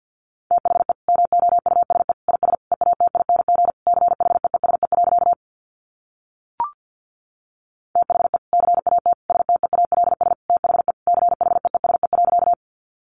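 Rapid Morse code beeps at 50 words per minute in a single steady mid-pitched tone, keyed in fast dots and dashes across two long bursts separated by a pause with one brief blip, no voices.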